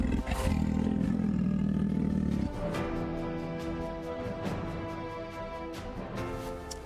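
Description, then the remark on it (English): A big jungle cat sent by Cougar Home Defense lets out a deep, rumbling roar that swells loudly, then trails into rough, growling breaths and snarls with sharp bursts. No one speaks. “Cougar Home Defense sends your big-ass jungle cat with 24 hours worth of food.”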